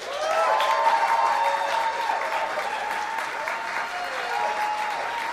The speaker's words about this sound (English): Give a big round of applause for the one and only Maz Jobrani.